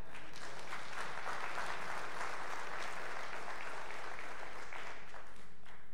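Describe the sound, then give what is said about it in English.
A crowd claps steadily for several seconds, a dense, even wash of applause that holds at a moderate level throughout. “Can somebody clap for that?”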